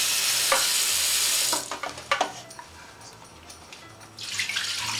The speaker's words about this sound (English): And now I'm going to take care of the turkey drumsticks. Place them in my bowl that I use. Give them a quick rinse with cold water.